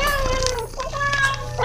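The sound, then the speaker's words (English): A cat lets out a long, drawn-out meow, a wavering mid-pitched cry that dips and rises again over a low steady background hum, with no one talking. “Well, go have fun, little kitties.”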